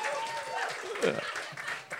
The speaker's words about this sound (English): Yeah, give him a clap for that.